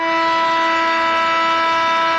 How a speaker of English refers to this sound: And it's actually not even so much of a buzzer. That's a horn.